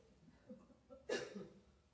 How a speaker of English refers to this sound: That was an appropriate cough at the right moment.